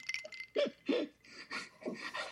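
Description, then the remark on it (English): Rapid, rhythmic panting with wet, sloppy smacking sounds in each breath, like lots of saliva moving around; about six or seven quick bursts in steady succession. “Weird panting. Just like smacking like lots of saliva.”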